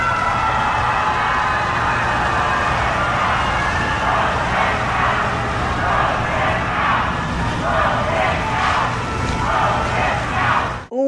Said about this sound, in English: President Trump and First Lady Melania Trump arrived at the Supreme Court Thursday morning to pay their respects to Justice Ruth Bader Ginsburg. Mourners waiting in line to do the same booed and chanted when they saw the president had arrived.